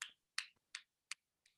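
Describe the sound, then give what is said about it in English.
Five sharp, dry popping clicks from a double-jointed left thumb, evenly spaced in a quick steady rhythm, fairly crisp, with silence between them and no talking. “Little one thumb applause.”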